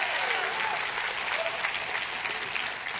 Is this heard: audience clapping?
yes